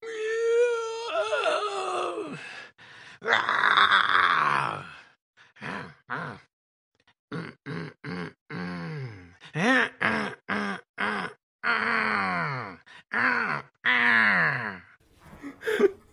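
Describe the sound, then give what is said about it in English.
A string of drawn-out, wordless groans and moaning sighs, pitch sliding up and down, in bursts separated by short gaps, like a zombie sex sound effect, fairly loud and unaccompanied. “So what were the answers again, sorry? Zombie sex.”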